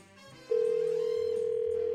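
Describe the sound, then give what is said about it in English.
A steady, continuous telephone dial tone as the K95.5 morning show hosts place a call comes in abruptly after a brief quiet moment and holds loud and unbroken to the end, with faint low background sound beneath it. “We're going to get Stephanie on the phone here, try to talk her into going out with you again.”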